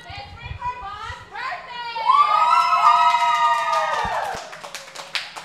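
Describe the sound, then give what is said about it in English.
Excited children's voices shout and sing close by at a birthday party, a lively, continuous burst of party noise that swells loudly in the middle and carries on for several seconds. “Literally, their birthday happening right by the camera.”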